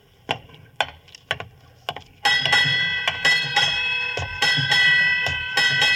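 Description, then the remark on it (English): A ship's bell rings out eight bells marking midnight at New Year, struck in quick pairs of clear metallic clangs that build into a bright, sustained ringing, loud with no voices. “Eight bells.”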